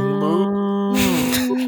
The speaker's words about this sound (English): That's a 12:30 moo if I've ever heard one.